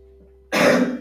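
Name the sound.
cough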